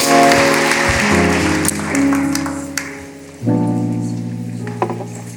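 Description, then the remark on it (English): A church audience applauds, giving the Lord a hand clap of praise: a dense wash of hand claps over sustained organ-like chords that shift pitch, with the clapping thinning slightly toward the end. “Come on, give the Lord a hand clap of praise and take your seat.”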